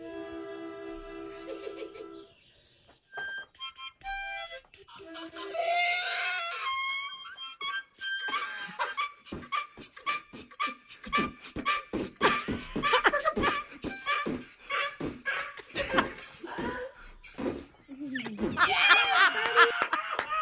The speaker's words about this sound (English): Let's hear the sound of a woman playing harmonica, and then her musical donkey joins in,